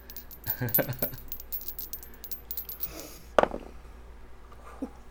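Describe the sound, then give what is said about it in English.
Dice rolled for a sanity check in a tabletop game rattle and clatter across a hard surface in a quick burst of clicks, then a sharper knock, with a faint tap after, coming up 15; no one speaks. “I'm gonna roll then.”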